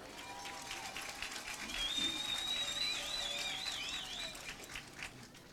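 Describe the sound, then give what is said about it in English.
Steady applause from a crowd for Handley High School seniors, a dense wash of clapping that swells slightly in the middle and holds for several seconds, with a few high whistles cutting through. “Please give all these seniors a round of applause.”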